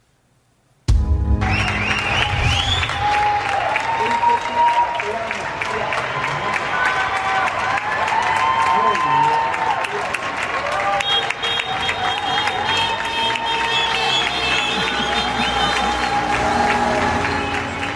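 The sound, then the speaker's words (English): People in Spain clap together at open apartment windows around 8 p.m., applauding doctors, nurses and medical professionals, in a dense, steady roar of applause, with shrill whistles and scattered cheers rising over it. The applause starts abruptly after a moment of quiet and stays loud to the end. “Listen to the sound of a community clapping.”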